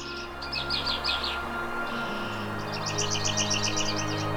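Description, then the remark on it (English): Migrant songbirds, including palm warblers, blue-gray gnatcatchers and a male yellow warbler, sing in two bursts of bright, rapid chirping trills, one early and one later, over a steady low outdoor rumble in Edge Lake Park early on a May morning, with no one talking. “Gone are the wood thrush and northern water thrush, and in are the palm warblers, blue-gray net catchers, and a lone male yellow warbler.”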